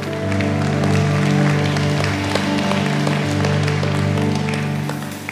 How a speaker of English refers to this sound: Stay and let's celebrate these individuals. Let's cheer loud. They're showing off their faith, right? There we go.